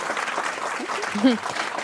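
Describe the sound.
An audience at a Commonwealth Club of California meeting applauds the speakers with steady, dense clapping that fills the whole stretch, while a few faint voices and a brief louder call rise through the noise.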